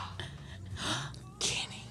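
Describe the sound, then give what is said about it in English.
A sharp, breathy gasp rushes in, followed by a second, louder intake of air a moment later, both airy with nothing else around them. “Gasps.”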